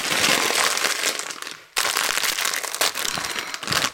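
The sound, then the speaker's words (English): A bag of pickled onion Monster Munch crisps is crinkled and torn open, a continuous loud rustling and crackling of plastic with brief pauses, bright and noisy across the upper range, with no voices. “Now, what better last-minute pep-me-up snack than a bag of pickled onion monster munch?”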